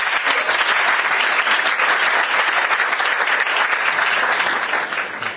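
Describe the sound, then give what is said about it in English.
A crowd applauds a performance, clapping steadily and loudly throughout, a dense wash of many hands with no pause, tapering only slightly at the very end. “I told you, I think this performance deserves another round of applause, please.”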